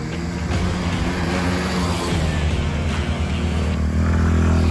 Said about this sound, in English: specifically while riding ATVs and shouting questions at each other over the engines.